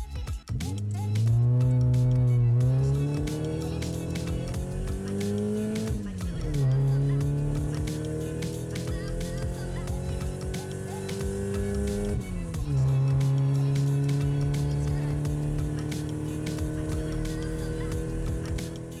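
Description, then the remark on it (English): A racing car engine roars loudly, its pitch climbing steadily through three gear shifts, with a tire squeal mixed in over the sustained, high-revving drone. “Hey, bud, if you think your car's faster than mine, let me know.”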